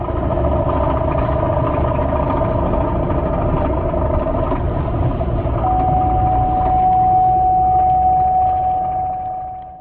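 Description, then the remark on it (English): A car engine runs loudly while driving, with a harsh rattling, grinding texture and a steady whine on top, continuing without a break and with no talking. The rattle occurs in any gear. “I thought it was the transmission that it like sheared off a gear tooth or something and it's rattling around in the transmission.”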